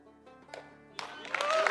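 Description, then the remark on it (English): A crowd gives pastor Andy Savage a standing ovation, the applause swelling from scattered claps into a dense, steady roar of clapping, growing louder toward the end, with a faint voice heard briefly at the start. “The crowd gave Andy Savage a standing ovation.”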